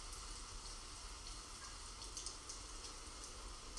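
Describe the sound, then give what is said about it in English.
Steady rain falls in a continuous, hissing patter, with faint scattered drops ticking through the wash of noise. No voices, just an even, soft downpour throughout. “Hearing the rain in the background.”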